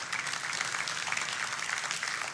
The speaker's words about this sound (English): And it's a wonderful thing. We can applaud that, sure.